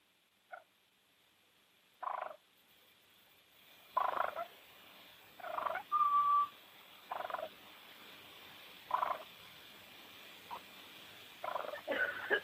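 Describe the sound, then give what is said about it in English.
An M150 ARO turkey call imitates a hen's soft purring and whining as she talks to her poults hatching from their eggs, in roughly nine short, rolling bursts spaced a second or two apart, moderately loud, with no talking. “I'm going to create some of the sounds for you on the M150 ARO. And what she does, she'll be purring and whining, just communicate with them.”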